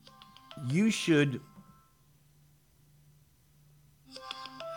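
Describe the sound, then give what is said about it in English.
A mobile phone ringtone plays a short, bright, sliding melody, falls silent amid a low hum, then starts ringing again with steady tones near the end. “I'm sorry, I thought I put this on vibrate only. I guess I didn't.”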